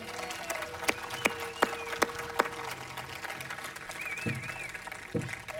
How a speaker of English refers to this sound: Hey friends, can we give a round of applause to the people who made this outdoor thing possible?